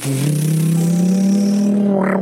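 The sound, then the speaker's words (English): A voice imitates a coffee machine: a loud, steady buzzing hum that drifts slowly upward in pitch for about two seconds, finishing with a short hissy sputter. “I am the coffee machine making coffee.”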